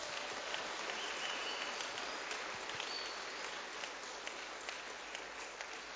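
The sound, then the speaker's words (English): A crowd at a worship service claps in praise for God, steadily and densely, a continuous wash of many hands at an even loudness with no voices standing out, lasting the whole six seconds. “Somebody clap for the King of Kings.”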